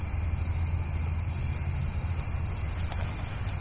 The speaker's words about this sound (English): you hear that constant buzz over there? I think it's cicadas, which can be out at night.